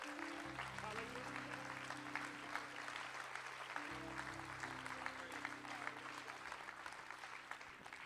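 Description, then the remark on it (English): An audience claps hands in praise, a dense, steady wash of applause lasting several seconds, with sustained organ or keyboard chords holding underneath and a brief chord change midway. “Let's give him one more hand clap of praise.”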